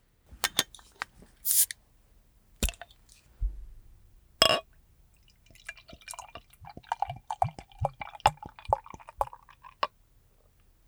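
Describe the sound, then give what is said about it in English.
A few sharp glassy clicks and knocks, then a dark beer pours steadily into a tulip glass, a bubbling, gurgling stream with fizzy crackles that rises in pitch as the glass fills. “And let's pour this sucker and see how we feel.”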